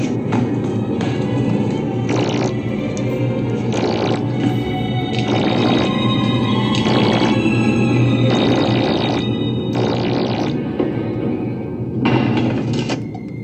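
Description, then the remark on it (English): A film sound effect of an axe halted mid-swing by Patrick's telekinesis, in a dramatic scene where the doctor tries to break down Patrick's door: a loud, sustained, warbling drone with creaking tones, pulsing with bursts of hiss about once a second, with no talking. “This is the sound effect that happens as the axe is stopped from hitting the door because of Patrick's telekinesis.”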